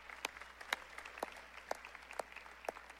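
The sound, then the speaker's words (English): Audience applause for all those who served and helped out: a soft, continuous patter of many hands, with a few sharper claps standing out at a steady, evenly spaced beat. No one speaks. “And so many others who served, just give a round of applause for all those who helped out, did a great job.”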